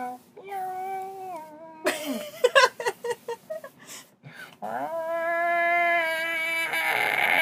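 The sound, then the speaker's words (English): A person imitates a cat's yowl with a drawn-out, wavering vocal whine, broken midway by a few sharp, breathy bursts, then a second, longer yowl rising and holding steady to the end. “That is not a cat noise. You gotta hiss like.”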